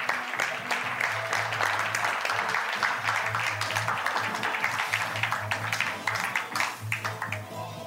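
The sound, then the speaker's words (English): An audience applauds steadily for several seconds as a guest is invited to join the stage, a dense crackle of many hands clapping with a low background hum underneath, easing slightly toward the end. “Could we get a round of applause for Simon, please?”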